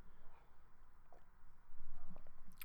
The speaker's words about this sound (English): Hold on, sipping coffee.